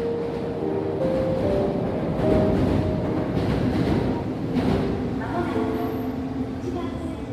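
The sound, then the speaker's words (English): A Tokyo subway train rumbles along steadily, with a continuous low roar and a thin whining tone that shifts in pitch, while faint indistinct voices murmur beneath the constant noise. “As we ride the Tokyo subway,”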